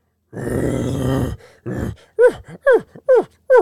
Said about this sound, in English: that's not a bear. That's an elk. Uh-huh. Like, that is the biggest, oldest, nastiest elk you've ever heard in your life.